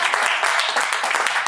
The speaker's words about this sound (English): Taylor produces the show, and let's give a round of applause for Taylor not being here tonight. Can we do that? Yes! Woo!